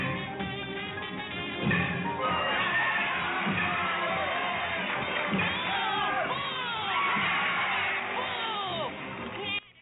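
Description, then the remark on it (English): A large crowd roars and cheers continuously as a team goes up to bat, with scattered high shouts and whoops rising over a dense wash of voices, like a packed baseball stadium during a game. “That crowd roared as the Gas House Gorillas go up to bat again.”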